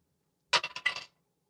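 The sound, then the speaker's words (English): Dice being rolled clatter across a hard tabletop in a quick burst of four or five sharp taps that bounce and settle within about half a second, with no voices; the roll comes up a 4. “Oh good lord, I rolled a 4.”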